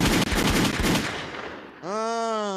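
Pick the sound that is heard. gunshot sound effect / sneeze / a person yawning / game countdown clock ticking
gunshot sound effect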